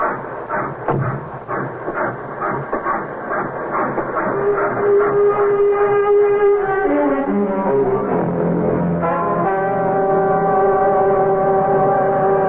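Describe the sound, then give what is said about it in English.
A passenger train heading to Manchester rumbles along the tracks with a steady rhythmic clatter, then a loud, sustained whistle-like tone joins in, shifting pitch midway and holding to the end. “The train's 5 minutes late. We'll make it up before she pulls into Manchester.”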